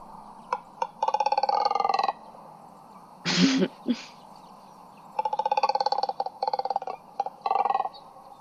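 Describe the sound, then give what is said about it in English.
Double-crested cormorant calls: rapid, rumbling, guttural croaks in pulsed bursts, several rattling sequences with a short harsh grunt in between, and no talking. “So that's what they sound like. Wow, it just sounds really rumbly, like a hungry stomach.”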